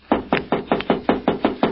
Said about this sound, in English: Now, I'll knock.